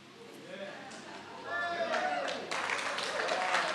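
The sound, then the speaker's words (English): An audience breaks into clapping after a speaker shows a Comrades race medal; it swells after a moment into steady, scattered applause, with murmuring voices and a few calls mixed in. “I wouldn't clap if you're about to hear the story I'm about to tell.”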